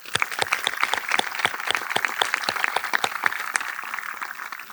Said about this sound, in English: I know that you want to thank them as well, so let's give them a huge round of applause.